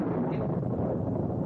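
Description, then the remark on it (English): A low, continuous rumble of thunder from an electrical storm rolls on steadily at an even loudness, a dense roaring wash with no sharp individual cracks and no voices. “The way things get dark so fast and all that crashing around out there makes you think of that verse from Joel”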